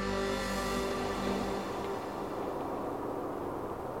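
A steady rumble of a truck driving along a road up to Whistler in May 2013, with a humming engine drone that eases after a moment into continuous road noise. No one speaks.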